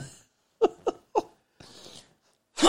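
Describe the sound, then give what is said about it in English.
A few short breathy vocal bursts and a hissing rush of air, then a person's loud sneeze explodes right at the end, landing on another person's hand. “that was a big sneeze.”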